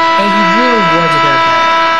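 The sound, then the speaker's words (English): A loud, harsh buzzer sound effect holds one steady, rich tone for about two seconds, while a voice talks over it. “Buzzer, because I've been hearing this argument for 9 years.”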